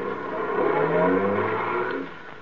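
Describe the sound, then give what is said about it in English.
A taxi engine revs and accelerates steadily, its rising hum filling the foreground for a couple of seconds before easing off slightly at the end. No voices are present. “Taxi. Hey, taxi.”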